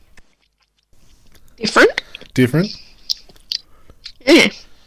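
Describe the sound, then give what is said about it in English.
Wet mouth sounds of someone taking gulps of a mango-flavoured Pepsi, a few short bursts interspersed with a brief spoken question. “Okay, give it a gulp.”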